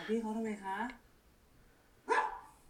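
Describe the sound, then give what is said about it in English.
A dog barks twice: a longer, drawn-out yowling bark, then a short, sharp one after a pause of about a second, with quiet between them. “Get him together, doggy.”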